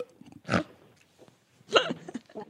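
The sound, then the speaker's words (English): Two loud burps: a short gruff one, then after a pause a longer, throaty belch with a voiced, grunting tone that trails off. “Are you burping?”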